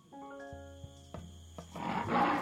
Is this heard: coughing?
no